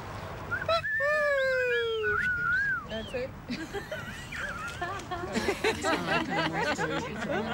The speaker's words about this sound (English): Was that actually them whistling?